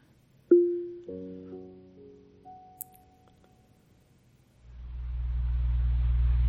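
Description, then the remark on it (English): A short electronic chime and a few sustained tones from an Alexa smart speaker opening its box fan sounds, then a steady box-fan whir fades in and holds as a loud, low, even drone with a faint motor-like hum. “It really kind of does sound like a box fan.”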